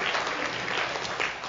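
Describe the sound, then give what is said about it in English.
Steady applause from the audience at Westminster First Baptist for its 81 Vacation Bible School volunteers, a dense crackle of many hands clapping at once, sustained at an even, fairly loud level throughout with no voices standing out. “So everybody give yourself a round of applause.”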